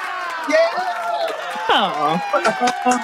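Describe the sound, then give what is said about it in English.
A brief burst of crowd cheering sound effect, many voices whooping and shouting together at once, loud, rising to an excited yell midway before trailing off with scattered calls. “In actual fact, you were so helpful, you can have a cheer.”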